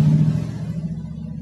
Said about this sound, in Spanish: Y bueno, también van a escuchar autos mal afinados. Autos con la banda que les rechina. Porque, bueno, este es mi hogar. Vivo en una esquina y hay ruido.